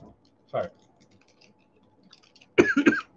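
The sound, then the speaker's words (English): A single sharp cough, a short pause, then a louder cluster of two or three harsh coughs, with no talking in between, from someone whose voice is worn out from yelling. “I cough a lot because I lose my voice from yelling too much.”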